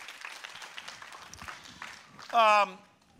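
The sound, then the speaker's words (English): An audience applauds the Lord before the offering is picked up, a steady wash of scattered clapping, and near the end a loud voice briefly cries out over it before the clapping fades. “Let's applaud the Lord and let the offering be picked up.”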